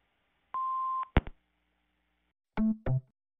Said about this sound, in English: Hello, we are not available now. Please leave your name and phone number after the beep.